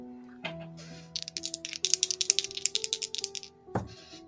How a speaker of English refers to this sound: Some good dice noise.